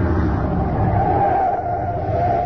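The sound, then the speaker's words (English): A truck engine rumbles steadily as it drives to a hidden spot by an abandoned wheat fallow and stops there, a loud, continuous low drone with a faint higher whine, easing only slightly right at the end. “Now, we leave the truck here.”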